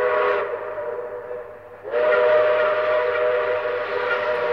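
A loud steam train whistle blows with a hissy, breathy tone, eases off for about a second, then blasts again and holds steady over a low rumble.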